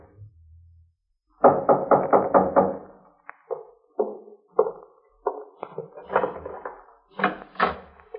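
A quick burst of about five firm knocks on a front door, followed by scattered clunks and rattles as the door is unlatched and swung open, with no talking.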